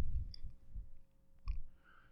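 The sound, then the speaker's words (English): A few sharp, quick clicks from a computer mouse as someone clicks around to bring up a map, fairly faint, spaced irregularly over a low background rumble, followed by a soft tonal hum near the end. “Forgive me if you can hear my computer clicking.”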